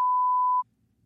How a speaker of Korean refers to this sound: 뭐야? 왜 삐 처리를 해? 에코를 넣으라고 했더니.